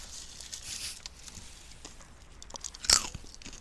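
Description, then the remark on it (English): Crunchy chewing of a snack from a bag, a series of crisp, bright crunches with one louder snap near the end, recorded quietly with no talking. “All right, I'm going to chew.”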